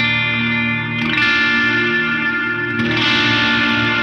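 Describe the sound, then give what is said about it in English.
An electric guitar strummed lightly through an effects pedal on its Super At mod setting with reverb, with bright, crisp chords ringing out. Two fresh strums land about two seconds apart, each sustaining into a shimmering, slightly driven, warm tone with no voices. “It has nice clarity and crispness when I strum lightly.”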